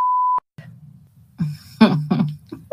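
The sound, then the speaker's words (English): A steady, loud censor bleep tone lasts under half a second and cuts off sharply, followed by muffled voices and low rumbling noise. “Bedtime beep.”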